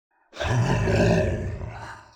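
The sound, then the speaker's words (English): A deep, rumbling growl from a sleeping man, one sustained raspy snarl-like sound that starts abruptly and holds steady for about two seconds before easing off slightly. “You gotta admit, the scary sleep demon noises are pretty adorable.”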